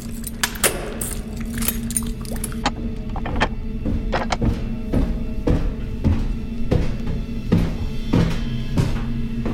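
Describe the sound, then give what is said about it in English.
Keys jangle and sharp metallic clicks sound as a door is unlocked and opened, with a steady low hum underneath and no voices. “Shh! The door!”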